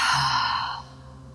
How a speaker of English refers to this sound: Connecting back into the breath, breathing in through the nose, deep breath in. Exhale, long breath out the mouth. Breathing in. Breathing out.